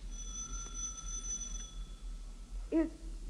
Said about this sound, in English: He stops, reads a stenciled inscription on it, and then angrily enters an apartment building and rings a doorbell marked Superintendent.